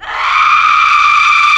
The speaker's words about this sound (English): He opened his mouth and tried to scream, but when he did, the sound was the sound of her screams.